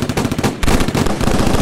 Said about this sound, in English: And so, the two rival gangs do what they usually do, and open fire on each other.